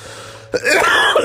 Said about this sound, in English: God, this fucking cough.